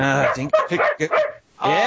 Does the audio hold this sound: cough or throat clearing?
no